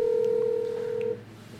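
A telephone number is dialed to call a taco shop: one steady, mid-pitched electronic phone tone sounds loudly for just over a second, then cuts off abruptly, leaving a quiet low hum.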